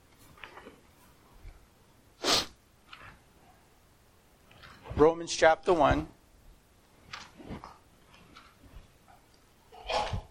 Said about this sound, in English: Bless you. Bless you.